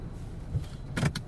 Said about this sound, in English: I'm here in the car with an Uber driver named ….